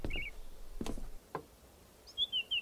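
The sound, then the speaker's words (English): A small thrush on a tower roof gives a few short, high chirps, three quick calls near the end after some soft knocks and shuffling, moderately loud. “On the opposite side of the tower on the roof, a small thrush.”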